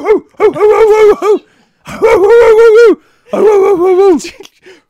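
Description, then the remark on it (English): A dog whimpers and yowls in three drawn-out, whiny bursts with short pauses between, fairly loud, with no talking over it. “A dog is going to be quite helpful at rescuing girls who are trapped.”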